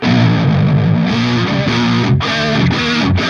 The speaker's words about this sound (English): Yeah, you hear the cocked wah.